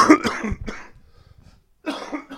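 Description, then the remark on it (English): A person coughs in a quick cluster of harsh, loud bursts, falls quiet for about a second, then lets out another rough cough. “We're going to need a cough button for this.”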